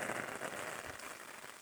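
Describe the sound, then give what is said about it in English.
Steady rain falling at 3 a.m. at mile 20 of a long-distance run-and-walk event, a dense, even hiss of countless drops pattering on a surface, holding a constant moderate level throughout with no voices. “Really quite wet.”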